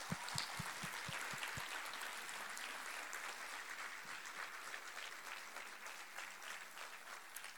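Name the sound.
audience applause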